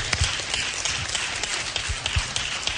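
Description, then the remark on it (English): An audience applauding everyone who took part in leading Zoom prayer calls: dense, steady clapping from many hands, with sharper claps poking out of the crackling wash throughout, loud and continuous with no voices. “Y demos aplauso.”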